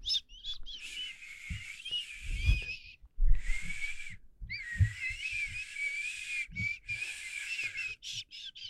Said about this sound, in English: I whistle.